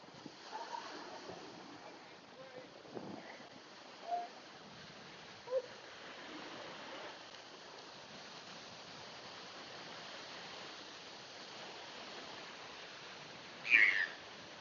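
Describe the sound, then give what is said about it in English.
Seagulls call a few times over a steady wash of surf on a cold morning, with brief faint cries early on and one louder squawk near the end. “Beautiful seagulls.”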